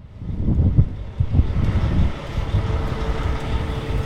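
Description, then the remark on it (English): Mud-covered heavy trucks rumble and idle as they pull into a gas station across the street from a school in northeast Natrona County on a sunny day after rain, a steady low engine drone with a few surges as vehicles roll in, set against open outdoor ambience with no one talking. “It's a sunny day outside Midwest School in northeast Natrona County, as mud-swept trucks pull into a gas station across the street.”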